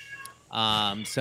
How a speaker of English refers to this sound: there's that cat. Oh my God, it's so loud. Jesus. That cat was like, New York City's going to be the big one.